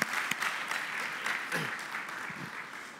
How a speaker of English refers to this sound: Let's give these guys another round of applause. Isn't that awesome?